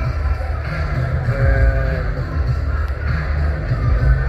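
A steady, loud murmur of an arena crowd just after the last boxing fight of the night, a 10-round super welterweight bout won by Nathaniel Gilmore on a decision, with overlapping voices blending into a continuous rumble that swells slightly midway without any single clear cheer.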